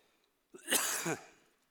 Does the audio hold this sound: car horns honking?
no